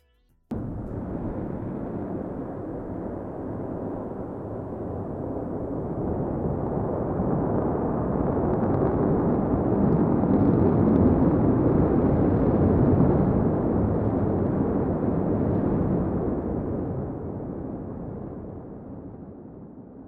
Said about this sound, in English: Starhopper firing its massive Raptor engine and hovering 20 meters high.